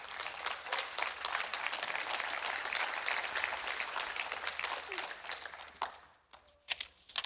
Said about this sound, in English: When I say clap your hands, it's not because it makes me feel good. It's because the Lord is worthy of our praise. Can we clap our hands? Can we do that? Can we worship the Lord together?